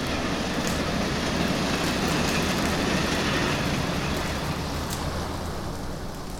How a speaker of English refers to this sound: They've already cleared the tracks, and the trains are coming in to claim the wounded.